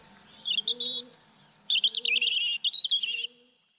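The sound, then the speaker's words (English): A robin sings a bright, warbling phrase of high, quick notes and trills, clear, with a softer low cooing murmur underneath and no talking. “Robins, tough little bastards there.”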